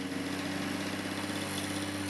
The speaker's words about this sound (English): great toughness is needed to survive the onslaught of the Victor lawnmower.